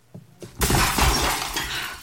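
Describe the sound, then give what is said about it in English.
Two soft thumps lead into a sudden, loud crash of window glass shattering as a man falls through the window, followed by a sustained, bright spray of falling shards that rattles on for over a second without fading much. “The Ripper stood frozen for a moment, stunned by the impact of the firearm, and then lurched forward to resume his attack, and the inspector fired in succession 4 times, each one sending him backwards with each shot, until he fell through the window.”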